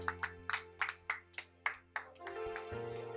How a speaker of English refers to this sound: Keep on clapping, keep on clapping.